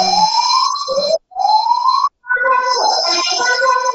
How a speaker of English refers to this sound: Well, this was a first, having a fire alarm go off in the middle of an interview.